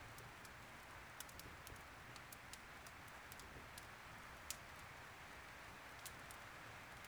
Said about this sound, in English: The sound of rain on the tin roof is mesmerizing.